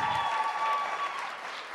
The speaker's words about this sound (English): Holy cow, that was amazing. Another round of applause for our last set of performance here. My gosh.